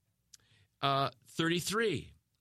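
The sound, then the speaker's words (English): A voice imitates typewriter keys clicking, with two drawn-out, sing-song vocal sounds, preceded by a faint tap. “using a typewriter. Oh, click, clack, click, click, clack.”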